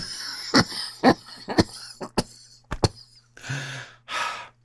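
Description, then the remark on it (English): Someone lets out a quick, uneven cluster of about six short, dry coughs after taking a hit of cannabis, then two long, breathy exhales. No one speaks. “A little cough sensation.”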